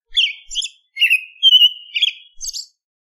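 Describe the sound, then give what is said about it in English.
A bird sings a bright series of chirpy, whistled phrases, about six quick bursts spread over three seconds with brief pauses between them, clear and alone with no talking. “It has a beak. It uses its beak for biting things. It can also sing.”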